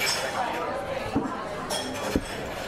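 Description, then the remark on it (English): A couple of light glassy clinks ring out as a wine glass is refilled with wine, over a busy restaurant backdrop, with murmuring voices and table noise throughout. “I'm just going to refill myself with wine because you're drinking too slow.”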